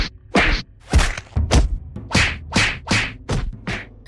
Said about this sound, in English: And that makes me want to go punch some trees. I need that wood. I guess I'm punching some trees.